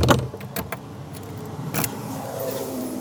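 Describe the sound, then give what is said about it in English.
Keys jangle, then a car locks with a few sharp clicks and a brief, louder clunk, followed by a low outdoor hum with no talking. “Oh, I've left my car unlocked. I locked the car.”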